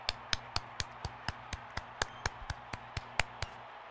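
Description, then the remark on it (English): Steady clapping for a game-saving catch in Kenny Rogers' perfect game, about fifteen sharp, crisp claps at an even quick pace with a low hum beneath, no voices. “We all can clap for it.”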